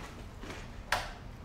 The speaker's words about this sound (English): open that door to get rid of that reflection.